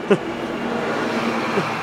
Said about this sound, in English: Oh, you can hear the bus.